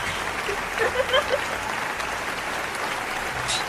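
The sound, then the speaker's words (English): A crowd applauds steadily, a dense wash of clapping hands that holds at an even level throughout, with a few brief voices calling out faintly beneath it early on. “If you can please stop clapping for 5 minutes, please.”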